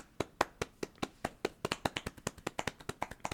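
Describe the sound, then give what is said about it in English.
A single person claps their hands away from the microphone in a quick, slightly uneven rhythm, about eighteen sharp claps that speed up toward the end, heard alone without any talking. “I'm gonna clap. I'm gonna try this word from the mic so it doesn't sound too loud.”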